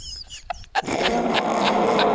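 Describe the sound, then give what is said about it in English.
A bear lets out a loud, rough, sustained roar that starts abruptly after a brief quieter moment and rumbles on steadily, with a few harsher pulses within it. “Hey, roar, buddy. Roar.”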